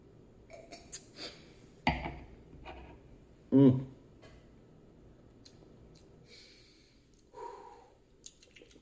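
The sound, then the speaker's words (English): Quiet slurps and small mouth clicks from someone sipping tequila, with a soft glassy knock, then one sharp breathy exhale and a fainter sigh later. Nobody speaks. “But hey, cheers. Let's take a sip.”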